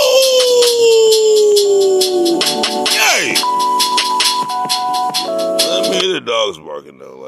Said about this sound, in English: Like, I know the birds are chirping. Yep, yep, yep. The dogs are barking.